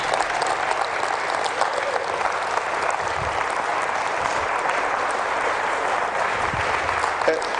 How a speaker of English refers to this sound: I know that you've met him in a number of places, but would you just give him a round of applause? He's had a long week.